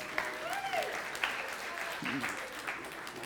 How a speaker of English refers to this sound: Fantastic. Let's give our actors a round of applause.